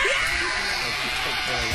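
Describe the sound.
A woman screams loudly and continuously for a couple of seconds, a harsh, shrill, slightly distorted cry that sounds like it is played back through a speaker.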